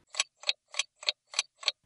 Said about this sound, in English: And the alarm bell, as always, brings to an end another interview show.